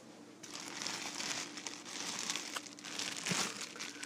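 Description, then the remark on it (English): A plastic bread bag crinkles and rustles continuously for several seconds in a kitchen, fairly loud, with irregular crackling bursts as it is twisted closed. No one speaks. “We are closing the bread now, here, in the kitchen.”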